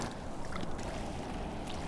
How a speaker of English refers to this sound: Yeah, it's really fascinating with the rain and hearing it fall on the water.